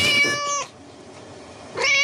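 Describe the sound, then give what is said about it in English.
Two loud cat meows, a drawn-out first one and a second starting after a short quiet gap, each with a bright, tonal, whiny quality. No talking. “Which would you rather have as a weapon? A cat?”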